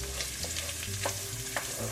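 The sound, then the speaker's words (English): Tomato paste sizzles steadily in a frying pan over low heat, caramelizing as the bottom of the pan browns, a constant crackle broken by a few soft scraping stirs. No one speaks. “So at this point, you can get your pasta water, get it boiling again, and then we're going to drop the pasta in the water while the tomato paste does its kind of caramelly thing.”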